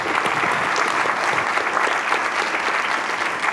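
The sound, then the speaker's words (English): An audience claps in a steady, dense round of applause, many hands blending into a continuous loud patter that holds evenly throughout without pause. The applause is for the audio-visual crew in the booth at a Q&A event. “Round of applause for the audio-visual guys.”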